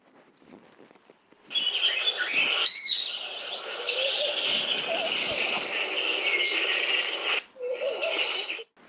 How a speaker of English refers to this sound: Let me get the sound again for you of the Nasna woodpecker.